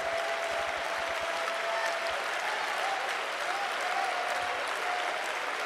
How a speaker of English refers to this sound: Oh, we ought to praise him. We ought to clap our hands. We ought to love him.